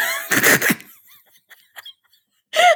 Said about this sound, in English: What was that? That was my chair. Oh, it sounded like a dog howling.